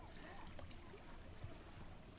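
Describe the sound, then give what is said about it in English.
Quiet, steady wash of lake water lapping at the shore, a soft continuous splashing with small irregular ripples and no distinct pauses, at low volume. “Did you hear that? Lapping on the waves.”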